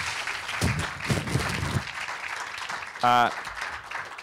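An audience applauds steadily for a keynote speaker, a dense wash of many hands clapping at a fairly even level, with a short, loud tonal vocal whoop or cheer breaking through near the end.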